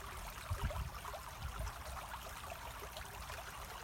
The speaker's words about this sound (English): You follow the river and its flow by the side of you, and its pace.